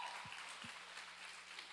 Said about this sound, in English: I'd like to take a moment to recognize the amazing speakers that actually came before me. Can we just honor them real quick with a round of applause? Please, please.